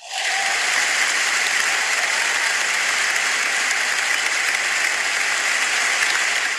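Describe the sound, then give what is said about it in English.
A crowd applauds the speaker steadily, a dense wash of many hands clapping that starts abruptly and holds at a loud, even level throughout, with no voices standing out. “No, seriously, don't clap for me.”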